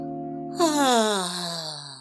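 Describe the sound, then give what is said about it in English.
A woman gives a long, drawn-out yawn with a breathy, rising then slowly falling vocal tone, clear, lasting about a second and a half with no talking over it. “As you can see her yawn.”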